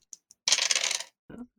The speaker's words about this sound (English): You did roll your two extra dice for a noggin hit, right? No. For damage. So two more d6s? Yep.